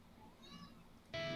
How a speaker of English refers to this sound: I hear a cat too. That's Zora.